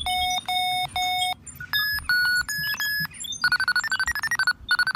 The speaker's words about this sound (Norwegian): Roboten suser fram og tilbake på skraphaugen og støvsuger flittig. Plutselig sluker den Tullerusken bruskorksamling og begynner å putre og ryke.